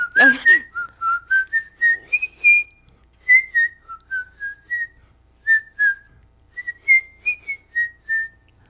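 A person whistles a short melody by drawing air inward, a run of clear, steady notes rising and falling in pitch, with brief pauses between phrases and no talking.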